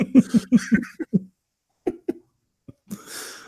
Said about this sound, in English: Oh, man. Make the cough noise a second time.